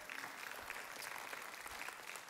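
A church audience applauding after a reading of Joshua 24:15, with many hands clapping in a dense, steady wash of sound that holds at an even level for the whole couple of seconds, no voices over it.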